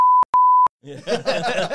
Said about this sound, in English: Yeah. We might have to beep that. Yeah, we might have to beep that out.